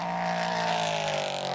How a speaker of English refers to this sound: The sonorous rumble of the V8 engine.